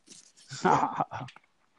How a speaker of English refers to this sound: It's good to hear Lucy again, our own dog in black. I don't know what she's barking at.